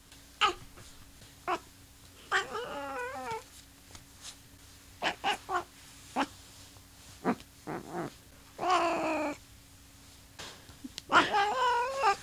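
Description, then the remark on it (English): A cat named Callie meows loudly and insistently, a run of harmonic yowls and short chirps spread over several seconds, with brief pauses and faint clicks in between. “I think Callie has something to add to this conversation.”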